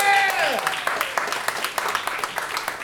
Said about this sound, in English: And also, will you give a massive round of applause to our cameraman for the night and our film director